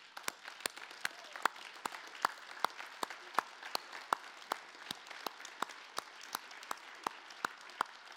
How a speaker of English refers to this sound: Now, one of the practices, new traditions that we do whenever God does something great and fantastic, let's stand, let's applaud what God just did. Okay?